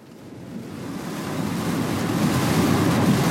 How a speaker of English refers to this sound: Okay, as you can probably hear, the rain has gotten a lot heavier now. I think we're seeing this is the results of the Hurricane Ian that hit Florida and Puerto Rico. And the Carolinas, this is pretty bad driving.